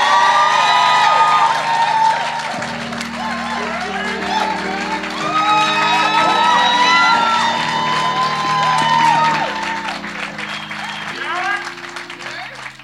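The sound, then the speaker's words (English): An audience at Epiphany Brooklyn claps and cheers loudly and steadily to welcome a guest, with whoops and shouts rising over the applause and low sustained chords underneath, easing off slightly toward the end. “Y'all give him a good Brooklyn welcome.”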